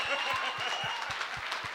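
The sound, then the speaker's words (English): A church audience in South Africa claps in a steady, rhythmic beat during a sermon, the many hands blending into a dense wash of sound with a soft crowd murmur underneath. “I am marking those people who are not clapping.”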